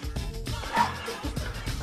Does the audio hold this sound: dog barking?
yes